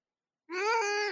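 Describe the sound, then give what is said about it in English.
A single drawn-out, fairly loud cat meow, rising slightly then dipping at the end, following a brief moment of silence. “Just found that cat the other day on the side of the road.”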